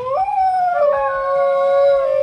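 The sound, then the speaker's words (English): A single long, sustained dingo howl that rises briefly then holds a steady, slightly falling pitch, loud, with no other sounds around it. “Number 10, Dingo.”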